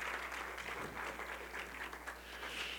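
An audience applauds steadily after a prayer at a church service, a dense wash of many hands clapping at once, sustained without a break and soft, with no voices over it.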